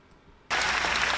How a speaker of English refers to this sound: Why are you applauding?